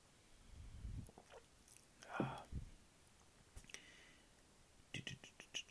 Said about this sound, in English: Let's take a sip of this quickly.